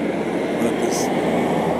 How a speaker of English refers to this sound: Let the trash truck go by.